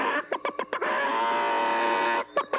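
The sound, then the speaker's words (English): A person imitates a chicken, with a few quick, choppy clucks, then a long, loud, drawn-out squawk, ending in another rapid burst of clucking. “I am having real trouble conversing with you, sir, if you're going to keep clucking.”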